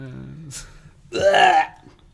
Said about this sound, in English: What was that? That was me reacting to you. Actually, it was me trying to cough, but also not cough and make it something funny.